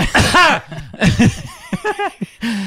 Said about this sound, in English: I just want to like, I'm gonna forget that my mask isn't on me when I do my eye contact cough at somebody.